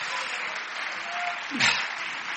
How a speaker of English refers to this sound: Oh, come on, clap your hands to the Lord and help me right now.